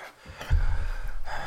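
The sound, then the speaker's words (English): A creature's heavy, rasping breath in a dim room, fairly loud, swelling in and drawn out for about a second with a rough, throaty edge. No talking alongside it. “He's breathing. That's something you hear in the room.”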